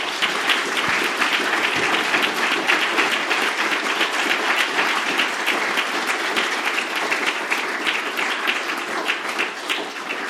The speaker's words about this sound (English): Well, that brings our panel discussion to a close. I think we've had the truth. We've had some profound truths, actually. We've had some good ideas, and we've had some poignant moments. So I think they all deserve a round of applause.